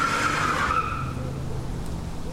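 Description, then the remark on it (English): A car backs out with a brief high tire squeal at the start, then its engine rumbles steadily as it drives away at night, heading home to Half Moon, with no voices. “Terrence backed out and headed home to Half Moon.”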